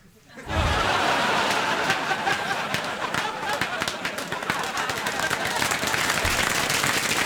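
Audience applause after a joke breaks out abruptly after a brief pause and continues steadily at full strength, a dense wash of many hands clapping with scattered chuckles mixed in.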